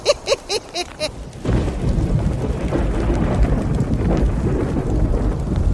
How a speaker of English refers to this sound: Storms are coming.